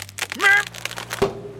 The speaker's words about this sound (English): With one final shake, the tree came toppling over onto Coyote's poor head.